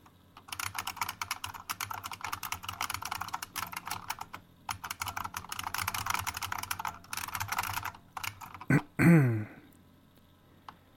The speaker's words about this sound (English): Not trying to tell you what to do or anything, of course, but, you know you're typing in the text editor, right?